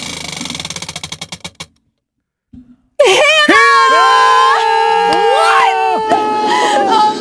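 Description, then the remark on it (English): A Wheel of Shame prize wheel, spun as hard as possible with a microphone held near it, spins with a rapid ratchet of clicks that gradually slows and stops, followed by a brief pause and then loud, high-pitched shrieking and yelling from several voices. “Spin it as hard as you can. Keep the microphone near it”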